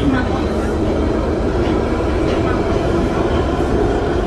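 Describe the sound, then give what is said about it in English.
A steady, loud rumble of a London Tube (subway) carriage in motion, with a low droning roar and faint rattling throughout, and indistinct voices murmuring beneath the noise. “He's on the tube. I guess that's what they call the subway over there.”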